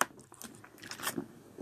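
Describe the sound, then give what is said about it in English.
A quick sip of water, with soft wet mouth clicks and a gulp over a second or so, and no one talking. “I had to get some water there.”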